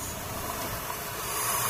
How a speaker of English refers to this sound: Inside, five baby owls are making this extraordinary hissing sound, almost like a vacuum cleaner, to scare off predators.